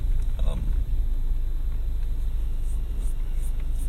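A large truck rumbles on the road, bearing down on the speaker, a heavy, steady low-pitched engine drone filling the whole recording with little change in loudness.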